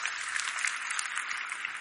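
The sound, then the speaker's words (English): An audience applauds steadily, a dense wash of many hands clapping at moderate loudness with no individual claps standing out, sustained evenly throughout with no voices. “You want to clap?”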